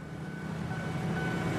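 A train rumbles steadily past at a railway station in central Jakarta, a loud, continuous low roar of wheels and engine with a faint metallic whine above it. No voices are heard.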